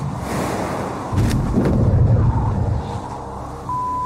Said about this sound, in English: Parachute opens.